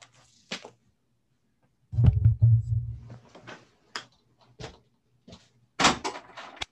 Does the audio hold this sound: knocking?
yes